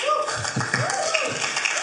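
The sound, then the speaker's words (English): A crowd claps steadily with a few voices whooping and cheering over the applause, a dense, lively burst of noise that stays loud throughout. “I just said put our hands together, but a few people are like, woo! So you got a woo, not just a clap.”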